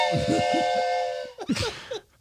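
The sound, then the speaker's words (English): A wooden whistle blows one steady, chord-like hoot lasting just over a second, fairly loud, with people talking over it and continuing briefly after it stops. “Please tell me you got a wooden whistle and you're not making that sound with your nose.”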